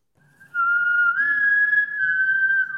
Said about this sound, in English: That's a misuse of the game's whistle.